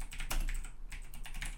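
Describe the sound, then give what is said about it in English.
Rapid clacky keystrokes on a mechanical keyboard, a quick irregular burst of sharp clicks, with a steady low hum underneath and no voices. “No, definitely just, mechanical keyboard.”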